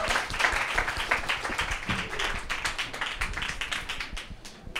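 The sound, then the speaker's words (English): An audience applauds steadily, many hands clapping in a dense, crackling patter that stays fairly even in loudness for several seconds before easing slightly at the end. “Can we give her a round of applause, please?”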